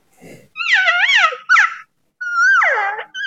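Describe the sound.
A hand-blown call imitates a cow elk: a few high, nasal mews, the first wavering up and down, then a short chirp and a longer one that slides downward, with no talking.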